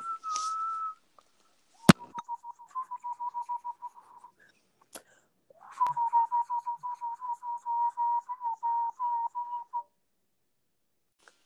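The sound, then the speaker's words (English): A person whistles in steady bursts: a brief tone, then a run of rapid repeated notes, a pause with a sharp click, and another long trill of quick pulsing notes. No talking. “You started whistling.”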